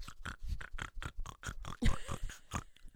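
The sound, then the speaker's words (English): A voice imitates the congested, snuffling snorts of someone with a once-broken, blocked nose: a rapid, uneven string of short, wet, pig-like bursts repeating for several seconds, with one louder, harsher snort near the end. “I'm always like, blow your nose.”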